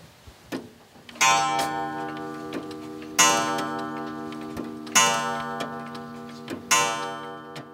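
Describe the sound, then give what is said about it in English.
Several old clocks, among over 100 kept in a home on a farm in Fairview, West Virginia, tick steadily, their overlapping ticks layered together, while four resonant chime strikes ring out at roughly two-second intervals and linger. No one speaks. “a man who keeps old clocks running”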